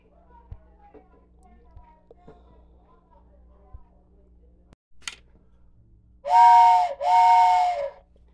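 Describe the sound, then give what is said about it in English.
Two loud, sustained blasts of a train whistle, each about a second long with a brief gap between, breathy and harmonically rich, sounding after a few seconds of quiet background rumble. “And yeah, I still have that damn whistle, and I see keep saying that I'm not gonna keep using it or whatever.”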